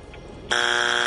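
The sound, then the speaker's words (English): A loud, harsh electronic buzzer cuts in abruptly after a brief quiet moment and holds steady, a sustained blaring tone: the time's-up signal on the quiz game Battle of the Birds after nobody answers the question. “That's a buzzer.”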